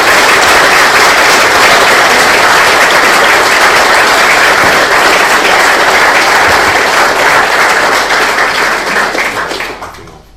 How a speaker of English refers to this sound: So I think we should give you another round of applause and then ask you if you would just send us out with a prayer. So thank you very much.